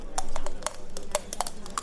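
A ballpoint pen taps against teeth in a quick, uneven run of about ten sharp clicks, each with a faint hollow pitch that shifts from tap to tap.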